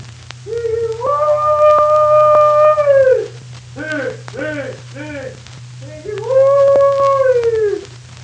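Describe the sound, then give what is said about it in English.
A man's hog-calling holler: a long, rising, sustained yell, a burst of short choppy syllables, then another drawn-out call falling away, all over a steady low hum and faint hiss. “And now he's going to call hogs.”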